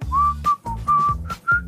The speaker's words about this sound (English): whistling along a little Top Gun Maverick. There you go.